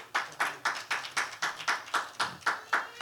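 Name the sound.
audience clapping hands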